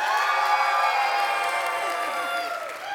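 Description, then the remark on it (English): An audience cheers and whoops loudly and steadily in an applause vote between animals, many voices blending into a sustained roar with clapping mixed in, fading slightly just before the end. “Some of you are clapping for both.”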